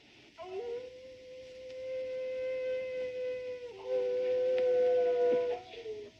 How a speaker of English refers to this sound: A wolf. Yes, a wolf. That's his cry.